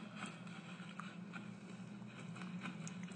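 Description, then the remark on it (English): Repeated crunching and crackling of feet stomping through dry fallen leaves in autumn, a steady rustling bed broken by several sharper crunches at an uneven rhythm, fairly loud, with no talking. “I'm stomping my feet in the leaves.”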